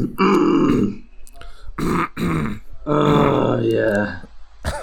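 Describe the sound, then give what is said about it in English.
Loud, guttural throat clearing comes in several rough, growly bursts: a long rasp, a few short choppy ones, then another drawn-out gravelly clearing, with a brief click at the end. “Jeez, we're really clearing our throats today.”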